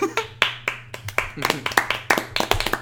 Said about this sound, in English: Okay, stop. It actually doesn't sound very good when you clap on a podcast. No. People love a sudden loud noise.